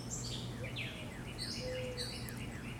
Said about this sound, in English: Oh, we got like a whippoorwill bird or whatever that's called.